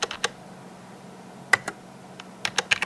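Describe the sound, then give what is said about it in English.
Quiet typing on a computer keyboard: short bursts of crisp key clicks with brief pauses between them, over a faint steady hum, with no voices. “Is that a keyboard you got there?”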